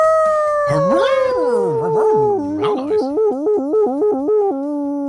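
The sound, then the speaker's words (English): A person imitates a dog howl: one long, loud, drawn-out wail sliding slowly downward while other voices yelp alongside, ending in a rapid run of rhythmic, wavering yips. “That was a proper dog howl, man.”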